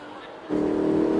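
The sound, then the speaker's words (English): A car engine accelerates with a sudden surge partway through, jumping from a low idle rumble to a loud, sustained roar that holds steady until the end. “You are liable for any damages to the vehicle, so please stop the car and slow down.”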